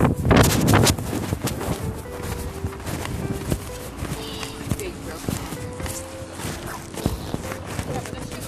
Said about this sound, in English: It's sorry, it's windy out here, so I'll see you guys in a minute.